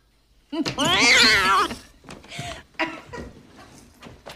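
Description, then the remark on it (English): A loud, drawn-out cat yowl sound effect in a film rises and wavers for about a second, harsh, followed by a few shorter, quieter bursts of clatter and muffled sound. “every time they talk about that piece, which is a lot, yeah, they'll zoom in on it and play this like cat yowl like 10 times as loud as anything else in the film.”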